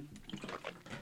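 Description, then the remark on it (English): A few quick, soft and wet sips and gulps of water as a person drinks, running together in a brief burst with no talking. “As I drink water.”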